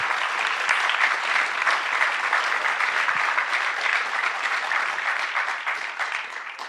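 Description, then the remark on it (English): A room full of people breaks into sustained applause, a dense, steady patter of clapping that holds strong for several seconds before tapering slightly at the end. “Can we give her a round of applause, please?”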